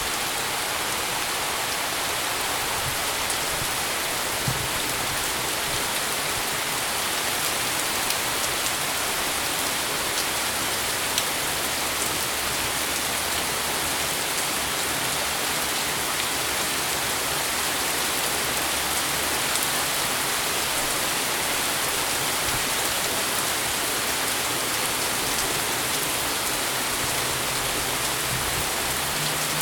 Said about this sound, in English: I'm not sure what the deal is with the rain. I haven't actually looked at the forecast to see what's bringing the rain, but here it is. Quite nice early evening rainstorm.